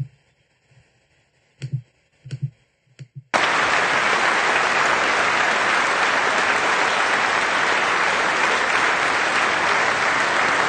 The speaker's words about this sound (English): Oh, I'm mistaken. A few of them did actually clap for this, I guess.